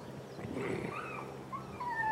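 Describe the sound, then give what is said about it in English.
A small puppy named Sassy whimpers in thin, high-pitched whines that rise and fall, fairly soft, with a few short squeaky cries toward the end. “Oh my gosh, you hear that? Sassy. That's Sassy. That's Selena's little puppy.”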